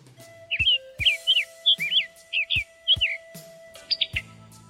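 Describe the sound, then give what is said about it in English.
A summer tanager (Piranga rubra) sings a series of short, slurred, robin-like whistled phrases in a steady rhythm, mixed with sharp clipped pit-to-tuck call notes, clear and alone with no talking. “Sometimes the best way to find them is to listen for the robin-like song and for the distinctive pit-to-tuck call note sounded by both males and females.”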